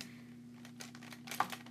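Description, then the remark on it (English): Quiet rattling and rustling as pencils or crayons in a cup are handled, a run of short scratchy bursts that peak with a sharper clack near the end, over a faint steady hum. “So first, we have this pencil, it's a cup of pencils, or like crayons.”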